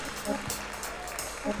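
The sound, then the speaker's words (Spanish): Loud, steady applause given in praise of God at a worship gathering fills the whole moment, a dense crackle of many clapping hands with no letup, while faint voices rise briefly underneath. “Dale un aplauso fuerte al que vive.”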